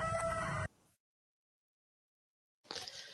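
Roosters in a yard crow loudly, a harsh, strained call that cuts off abruptly, followed by near silence before another loud crow begins at the end.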